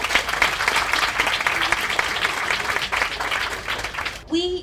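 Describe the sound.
An audience claps steadily for about four seconds, welcoming two speakers to a talk about heroines, a dense, even patter of many hands that stops abruptly as a voice starts talking.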